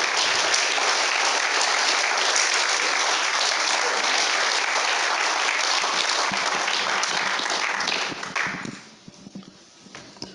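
A crowd claps steadily in a dense, crackling wash of applause that holds for about eight seconds, then thins out quickly into a few scattered, fading claps.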